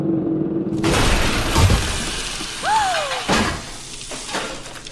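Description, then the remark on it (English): A low mechanical hum gives way to a sudden loud crash of breaking, crumbling debris as a drill punches through the floor of Vault 101 into a room, followed by a brief metallic squeal and another crunching impact. “After hours of dirt and sweat, the drill bursts through the floor of Vault 101 directly into the bashful blonde's room.”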